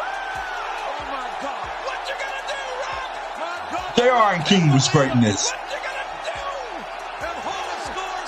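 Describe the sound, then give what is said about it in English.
A dense, steady roar of an arena crowd in Toronto cheering during a classic match featuring the Rock fills the whole clip, swelling louder for a couple of seconds midway, with a man talking over it. “Listen to the crowd, he hopes up, man. Toronto was on fire.”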